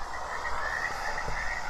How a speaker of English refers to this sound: There we go. Rushing water with frogs. Okay. It sounds like my guts.